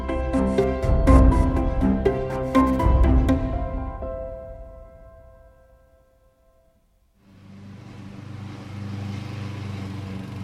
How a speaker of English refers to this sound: Now, what's more pleasant on a warm summer afternoon than the sound of a lawnmower in the distance and the smell of newly mown grass?